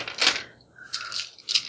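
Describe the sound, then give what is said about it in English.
Six dice are rolled during a tabletop role-playing game, rattling and clattering across a hard surface in a few quick bursts of bright clicking, fairly loud, with no voices. “So, 6 dice.”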